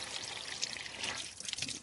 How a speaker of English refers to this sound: Well, it does seem appropriate that we're going to be standing and doing this experiment in the rain. And now we're just going to fill the bottle up from an outdoor tap.